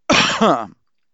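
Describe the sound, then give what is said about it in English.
A single loud throat-clearing cough with a raspy, guttural texture, lasting under a second and followed by silence; no one speaks. “Cough break.”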